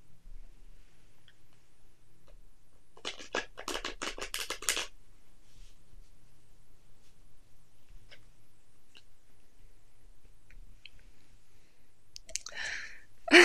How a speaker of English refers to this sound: We are using my cat tarot deck, and we're going to shuffle and draw a card for the message that we need for this episode.